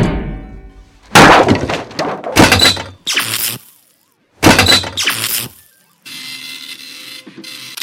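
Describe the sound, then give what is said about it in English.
A ball peen hammer smashes into the Vault computer again and again, each loud blow bringing a burst of cracking and shattering glass and plastic. After the blows comes a steady electrical buzz with faint clicks. “Let me see if this ball peen hammer can help.”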